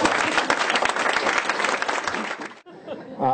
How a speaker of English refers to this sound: So I have the best possible partner in the United States Senate. Give a big round of applause to my friend, Dan Coates.